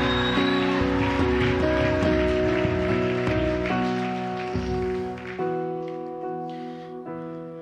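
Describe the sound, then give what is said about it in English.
A church audience claps for the Lord steadily in a dense, crackling wash that rises and fades over several seconds, layered with sustained organ-like chords holding underneath. “If there's anybody that believes it, Give the Lord a shout and a clap in this place.”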